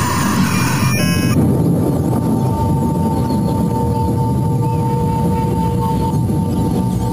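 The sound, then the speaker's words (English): A dial-up modem connects in the 1999 film Karate Ruler: a burst of harsh, layered electronic tones gives way to a loud, steady hiss with thin sustained pitches running underneath, and no voices. “By the way, Karate Ruler was filmed in 1999, hence the dial-up modem sounds.”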